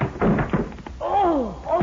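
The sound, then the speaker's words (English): A couple of heavy, dull thuds as a body slams into an 8-inch-thick locker door, trying to knock it open, followed by a drawn-out, wavering groan of pain. “I'm going to try to knock that door open.”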